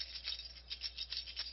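Keys are shaken as accompaniment to singing Jingle Bells, jingling in a string of quick, irregular shakes, bright metallic chinks rising and falling several times over a second and a half, fairly soft, with no voices.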